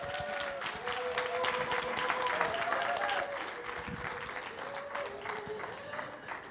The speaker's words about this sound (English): Do I hand it off to you, or do I just give the Lord a hand clap if you learned anything?